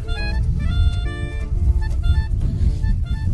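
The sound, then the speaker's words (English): Heavy, steady low rumble of traffic on a street, with cars driving past; a thick engine drone layered with faint tonal whine, loud and continuous throughout with no one speaking. “They've all driven past.”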